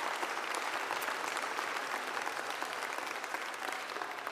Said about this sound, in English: If you've got somebody seated nearby, and you probably do, it'd be a good idea for you just to offer up a round of applause for their help this week in getting everything ready for this week.